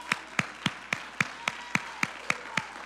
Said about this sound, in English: Come on, somebody clap your hands if you believe that right now.